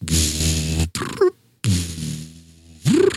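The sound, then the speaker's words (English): A person vocally imitates the low, droning ambient engine hum of a spaceship heard in the background of an audiobook, in two long buzzy bursts, the second ending in a brief rising tone, loud and without other talk. “And plus, like, there's a little bit of music and there's always ambient noise in the background. Yeah. Yeah. Like, if they're on a ship, if they're on a ship, you hear.”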